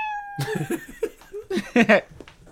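Cats yowl in a series of wavering, drawn-out cries that rise and fall in uneven bursts, growing louder toward the end, after a brief steady electronic tone at the start.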